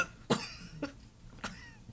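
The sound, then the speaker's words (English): A voice acts out three harsh, sputtering coughs in quick succession, loud, followed by a faint wet splutter, portraying a man in great pain coughing and sputtering up blood as he first tries to speak. No speech. “tries to give you a response, tries to form words, but he's in so much pain that when he first tries to speak, it's just coughing and sputtering up blood.”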